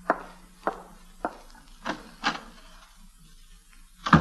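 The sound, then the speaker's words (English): A door leading to a corridor is opened with a string of wooden clunks and rattling taps, spaced unevenly over a few seconds, ending in a louder knock. No one speaks. “Now, step back against the wall so that no one can see you from the corridor when I open the door.”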